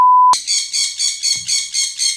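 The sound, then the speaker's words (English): A pet bird squawks loudly, about eight harsh, shrill calls in a steady rapid rhythm, following a brief steady electronic beep at the start. “But the fucking bird will shut its fucking mouth.”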